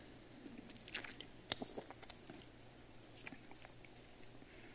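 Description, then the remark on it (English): Soft crinkling and clicking of a plastic water bottle being handled and sipped from, with scattered crackles and one sharper snap, no talking. “I can take my bottle of water and take a drink.”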